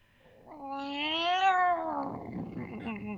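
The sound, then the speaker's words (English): A single drawn-out cat yowl, loud, rising into a strained wail and then sliding down into a rough, growly tail, like a cat in heat and agitated. “Oh, that one sounded like it was sort of in heat, but also pissed.”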